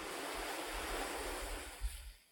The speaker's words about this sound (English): Throughout the islands, one can see coconut palms with exposed roots clinging to eroded coastlines, angry waves crashing against sandbag seawalls, and the ocean seeping into people's homes.